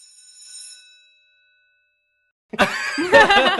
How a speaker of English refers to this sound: And that bell and the Star Wars Force Awakens trailer music is going to be our beacon that it is about time to wrap up.